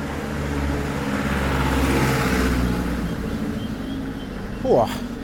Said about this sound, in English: I am walking up quite a large hill. Let me jump out of the way of this car.